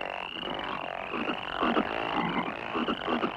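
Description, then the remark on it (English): A chorus of frogs croaking in dense, overlapping bursts, several calls stacking on each other with a steady high whine running underneath, continuous with no talking. “O goddess of frogs, Hex, breather of life, bring forth frogs!”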